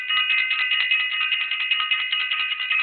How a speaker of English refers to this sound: I want to ring the bell for self-invested. Ring that bell for self-invested.